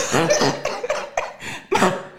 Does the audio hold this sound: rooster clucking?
no